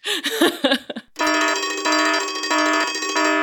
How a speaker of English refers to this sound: Minutia! Is that a fucking minutia alarm? Jesus Christ.